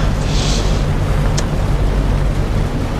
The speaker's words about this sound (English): Wait, turn the engine off.